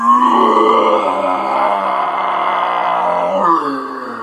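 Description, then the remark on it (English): A person imitates a lion's roar with one long, loud, growling vocal bellow that holds steady for about four seconds, then briefly rises before trailing off. No other sounds are present. “Then he began to roar like thunder.”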